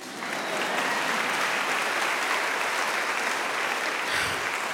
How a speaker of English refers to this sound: Please applaud.